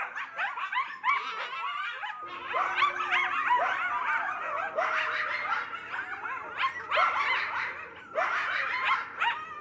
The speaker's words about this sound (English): Those are the sounds of coyotes off of a release called ….